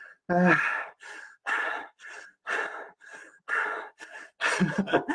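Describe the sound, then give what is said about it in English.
Heavy, labored breathing of a person exercising with a heart rate of 160 beats per minute, about eight loud breaths in quick, steady succession, each a harsh rushing gasp or exhale, with no talking. “Yes, Samantha, a lot of heavy breathing videos.”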